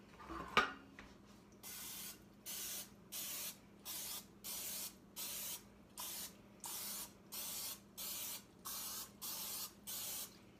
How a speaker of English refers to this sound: we're going to spray our muffin tin here. So what you're going to do is just spray each little cup.